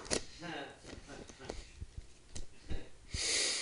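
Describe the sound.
A person mimics someone snoring in bed with a few wheezy, snorting breaths, fairly loud, ending in a long airy hiss of exhaled breath.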